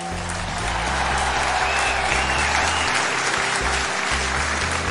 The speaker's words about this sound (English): And the crowd is just like in complete awe. And they, like, as soon as he said that he ran into James Lamb, there's a like just loud eruption of applause and everything like that. And then it quickly like quiets down.